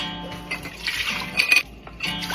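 Two cups of warm water poured steadily into a container for a dough recipe, a continuous splashing rush with a faint rising pitch as it fills, pausing briefly before the flow resumes.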